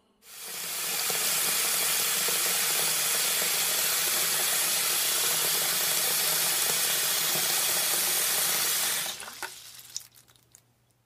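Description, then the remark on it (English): A balloon fills from a running tap: a steady, loud rush of water for about eight seconds, then it cuts off, followed by a few faint clicks and drips. “I'm filling it up with water. Now it's a water balloon.”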